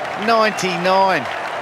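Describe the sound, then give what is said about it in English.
A cricket stadium crowd applauds with a steady wash of clapping as batsman Mark Richardson is out caught for 99 off Daniel Vettori's bowling, while two long, rising-and-falling voiced cheers ring out over it, loud and sustained. “The crowd going off.”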